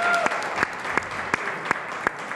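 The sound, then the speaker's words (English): A crowd applauds the event's organizing team and volunteers, a dense wash of clapping with several sharper individual claps popping out at regular intervals above the steady patter. “How about giving these guys a round of applause for the hard work they've put into this week?”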